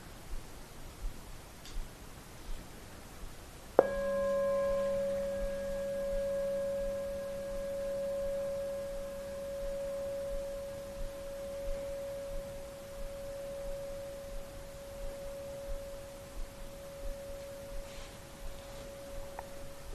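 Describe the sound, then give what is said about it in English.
A bell is struck once during a brief awareness exercise, then a clear, steady mid-pitched tone with faint higher overtones rings on, slowly fading over about fifteen seconds above a soft background hiss. “And on the first ring of the bell, just feel the experience in the body without needing to name it.”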